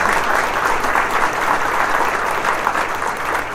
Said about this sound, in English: she deserves a round of applause, too, because she did an amazing job.